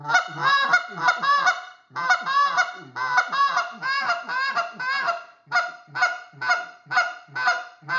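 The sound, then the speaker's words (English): A goose call blown in quick rhythmic bursts, mixing short sharp spits and clucks with drawn-out moaning honks, loud and continuous with only brief pauses and no talking. “Again, that little spit, kind of working with that moan and cluck.”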